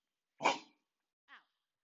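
A dog barks twice at a delivery at the door, a sharp, full bark followed about a second later by a shorter, softer one, with no talking and quiet around them.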